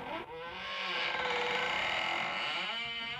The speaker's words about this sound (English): Today on the Afternoon Zone, we are counting down our top 5 scary noises. Going into our sound effects folder, let's count down from number 5. A creaky door.